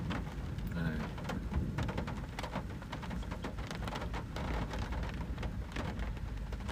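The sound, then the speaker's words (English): Steady rain patters and crackles on a surface throughout, dense and continuous, with a low rumble of thunder rolling underneath, in a storm with lightning. “I don't want to go out there in the rain and the lightning.”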